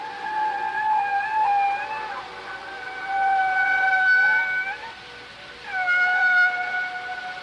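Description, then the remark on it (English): Whale song used as the sound of aliens: three long, wavering, high moaning calls with rich overtones, each swelling and fading in turn, fairly loud and with no talking. “And I have to think that they didn't really know what the aliens were going to sound like, because it's obviously whale song.”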